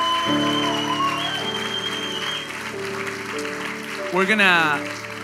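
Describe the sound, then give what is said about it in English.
An audience gives God a round of applause, the dense, steady clapping blending with sustained keyboard chords, while a voice rises briefly over the crowd near the end. “Denle a Dios un fuerte aplauso.”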